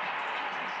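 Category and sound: crowd, arena crowd cheering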